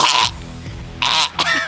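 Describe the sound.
A voice imitates a dog's hacking cough: three rough, raspy bursts, the first alone, then two more in quick succession after a short pause.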